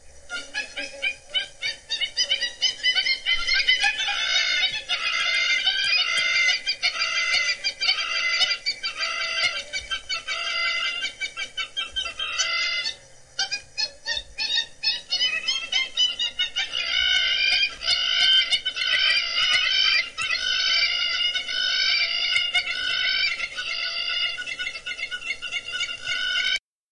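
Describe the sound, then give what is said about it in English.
Loud, continuous chorus of harsh, chattering calls of hammer-headed birds, overlapping and frantic, like a family of chimpanzees arguing; a brief break near the middle before the raucous squabbling resumes. “Yeah, I think it sounds like a family of chimpanzees arguing. So we'll play you that now.”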